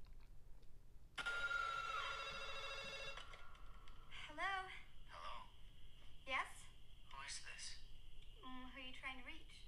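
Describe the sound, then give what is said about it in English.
A telephone bell rings in one loud, sustained burst lasting a few seconds, in the phone call scene of the film Scream, then stops and a voice begins speaking over a faint background hum. “So far, I haven't gotten to any scary points yet because I'm doing the, you know the iconic scream scene, the phone call.”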